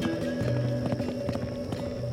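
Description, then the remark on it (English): Horse hooves gallop in a quick, steady run of hollow thuds as a rider kicks her horse and shoots off toward a plateau, clear, with a sustained musical drone underneath and no one speaking. “She kicks her horse and shoots off toward the plateau.”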